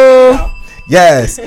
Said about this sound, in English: I keep missing the bells. Where is the bells? There we go.